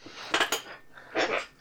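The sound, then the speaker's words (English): A broken chair gives two short bursts of scraping, rattling creaks, the first a quick cluster and the second a longer groan a moment later, with no talking. “My chair is still fucking broken.”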